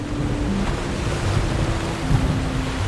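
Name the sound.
ocean waves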